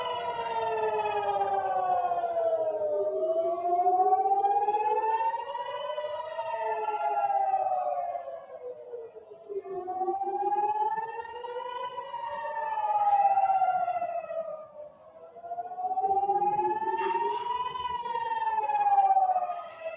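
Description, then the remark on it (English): An air raid siren wails steadily during a rocket attack in Ashkelon, Israel, its pitch slowly rising and falling in long sweeps every few seconds, loud and continuous throughout with no voices over it. “That's a weird sound of a siren.”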